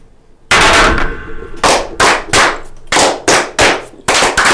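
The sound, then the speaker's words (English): Glasses banged hard on a table in a toast, a loud series of sharp clattering knocks, about eight or nine in an uneven rhythm, with no one talking. “Joe's cannon almost misfired all over the floor. It did misfire a little bit.”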